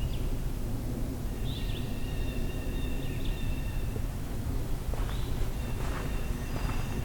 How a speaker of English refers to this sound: Black-throated green warbler.